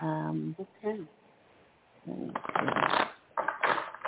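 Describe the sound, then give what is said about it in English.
A short bit of speech, then a deck of tarot cards is shuffled: two loud, dense bursts of riffling flutter with a brief pause between them. “Okay, one more shuffle, and we cut the cards, see what comes out.”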